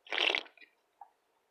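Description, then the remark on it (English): A loud, wet slurp of a sip lasting a moment, followed by a couple of soft swallowing clicks, with no talking. “Gotta take a sip.”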